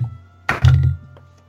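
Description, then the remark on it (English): A d20 die drops onto a table with a single solid thunk, then rumbles briefly as it rolls and settles with a couple of faint clicks. No one speaks. “So roll an intelligence check for me.”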